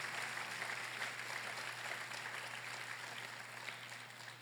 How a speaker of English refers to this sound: Denle un aplauso si lo puede creer. Give God a round of applause if you believe it.